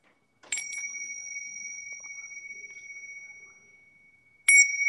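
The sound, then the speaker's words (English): A small bell is rung twice to clear the energy, each strike bright and clear with a sustained shimmering tone that fades slowly; the second ring comes about four seconds after the first, loud. “So I'm going to really quickly, just to clear our energy really quickly, I'm going to ring my little bell here.”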